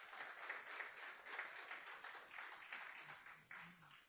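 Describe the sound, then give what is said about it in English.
A church audience breaks into applause, a dense, steady wash of many hands clapping that holds for about four seconds at an even, moderate level with no voices over it. “Give God a round of applause, church.”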